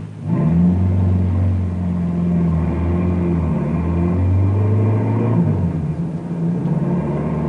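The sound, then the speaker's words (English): A car engine hums steadily as the vehicle drives along a road toward a barricade, its low rumbling tone holding at a constant speed and loud throughout, with no voices. “Meanwhile, Bill hears the car approaching, and he walks out in front of the barricade stoops down over the lantern just as Neil did when Norman was driving.”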